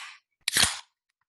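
A beer can cracking open: a short hiss, a brief pause, then a sharp metallic pop followed by a loud, fizzing rush of carbonation that fades within half a second. No voices.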